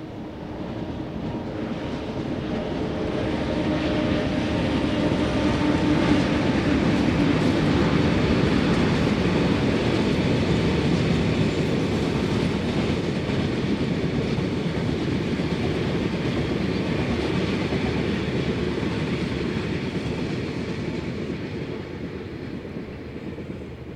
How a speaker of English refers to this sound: The train just passes through the town, without even slowing down,